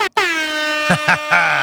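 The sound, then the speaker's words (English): A loud, sustained air horn blast sounds nearly continuously after a brief cutoff at the start, with a few short voice-like bursts overlapping it near the end. “Got to use the air horn for the first time.”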